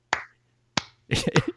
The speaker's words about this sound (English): I'm getting a slow clap on it.